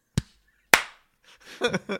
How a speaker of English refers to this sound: Ready for the clap in three. Oh, yeah. Two. One.